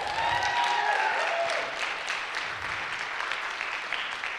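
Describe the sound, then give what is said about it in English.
An audience claps and cheers for God in a dense, continuous roar of applause, with whoops and whistled cheers rising over it at the start before settling into sustained clapping. “So you are allowed to cheer for God on that.”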